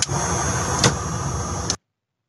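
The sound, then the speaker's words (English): Steady engine rumble and road hiss fill the inside of a state patrol car on the trooper's last time in it, with a thin high electronic whine, one brief knock partway through, then an abrupt cutoff into silence. No one speaks. “So State 1034, this is the last time you'll hear me in a state patrol car.”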